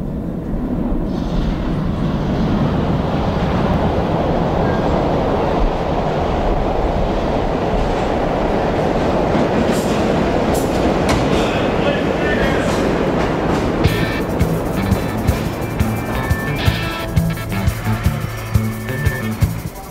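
A loud, continuous rumble of an underground train roaring through a station, steady, before music with rhythmic beats starts up beneath it in the final few seconds.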